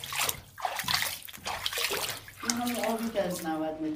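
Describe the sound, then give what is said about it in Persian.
Steady rushing of water pumped up from 90 meters deep, gushing out at a water-rich well in a turquoise mine, loud and continuous, with a man's voice starting to talk over the flow partway through. “این دقیقا همون آبیه که از 90 متری پمپاژ میشه میاد بالا.”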